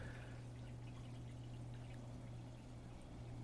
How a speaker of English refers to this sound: I can't tell if I heard my dishwasher through my earphones. I think it is. It might be dishwasher.